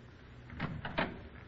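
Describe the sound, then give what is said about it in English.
A door swings shut with a few soft, quick knocks and clicks of the latch, fairly faint over a low background hum, with no voices. “Why did you close the door”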